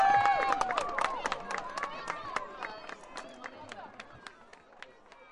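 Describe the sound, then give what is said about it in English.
A crowd claps in scattered, uneven bursts, mixed with cheering voices and chatter. The applause starts fairly loud and gradually thins and softens over several seconds. “Right, big round of applause, please!”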